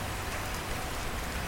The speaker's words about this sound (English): The rain clattered around us like thunder